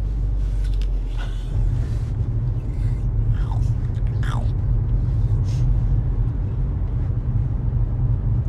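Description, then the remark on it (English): Crunchy food being bitten and chewed, a few crisp crunches standing out early on over a steady low rumble and muffled background noise. “It's that secondary crunch what really gets me.”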